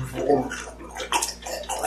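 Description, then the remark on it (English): Heavy water splashing and sloshing in several surging bursts as a creature rises up out of water about 3 feet deep right next to the listener. No voices are heard. “as this thing is rising up out of the water right next to you.”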